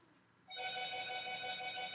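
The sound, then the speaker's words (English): A cell phone rings loudly, a bright, steady electronic tone with stacked harmonics that starts abruptly and sustains without pause, mostly alone with no talking over it. “That's the loudest cell phone I've ever heard in my life.”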